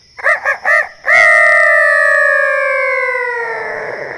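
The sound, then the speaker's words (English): Children loudly imitate a chicken: three quick, high clucks followed by a long, sustained crowing cry that slowly drops in pitch and fades slightly at the end. “Try to make the chicken sound very loudly.”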